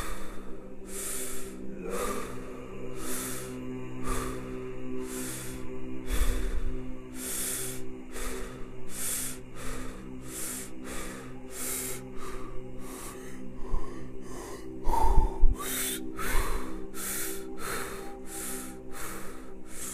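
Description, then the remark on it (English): Forceful, rapid breaths pump in a steady rhythm during a breathwork exercise, roughly one per second, loud, with sustained tonal music humming underneath throughout. “Come back to normal breathing.”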